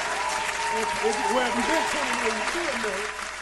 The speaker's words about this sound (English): We gonna have another clap, y'all. Y'all don't know.